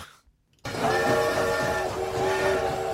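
A loud, close train whistle sounds in long sustained blasts over the rumbling clatter of a train, beginning abruptly after a brief near-silent gap.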